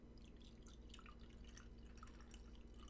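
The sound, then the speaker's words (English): Wine trickles into a glass, a quiet, continuous bubbling and splashing that runs the whole time over a faint steady hum, with no talking. “Listen, we're going to do an ASMR wine pour break, so.”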